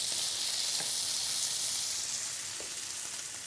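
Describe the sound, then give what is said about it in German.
Steady sizzling of Brussels sprout and bacon skewers frying in a pan in the fat from the bacon, without added oil: a dense crackling hiss with occasional small pops, continuing without pause and no one speaking. “Und das Fett vom Speck gibt genug Fett eigentlich in der Pfanne, dass du kannst ohne zusätzliche Öl noch arbeiten.”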